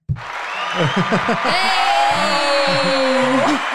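A stock thunderous-applause sound effect: a loud, steady wash of applause lasting several seconds, with excited cheers, whoops and a long held shout rising over the clapping before it cuts off abruptly.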